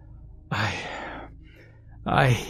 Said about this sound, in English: I said in between heavy panting.